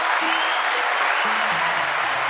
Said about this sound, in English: Let's give Julian a round of applause.